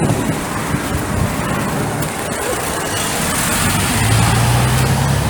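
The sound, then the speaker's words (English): A bus rumbles past with a loud engine drone and a broad rushing roar, letting out a blast of warm air from its back. The motor's pitch climbs near the end. No one speaks. “Damn, that blast of warm air from the back of the bus was actually quite nice.”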